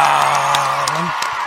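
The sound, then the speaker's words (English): A crowd cheers loudly with steady applause for Eric Jackson, owner of Jackson Kayaks and FLW Tour Pro. It is a dense roar of clapping punctuated by sharp claps and a rising whoop from one voice. “Ladies and gentlemen, give it up for this guy, Eric Jackson, right there.”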